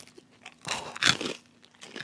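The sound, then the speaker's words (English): A crunchy candy bar being bitten: a couple of sharp, brittle crunches in quick succession, followed by softer chewing crackles, with no talking. “Feel the crunch.”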